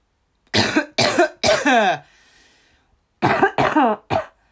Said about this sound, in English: See, I sound a lot healthier. My cough sounds loads better.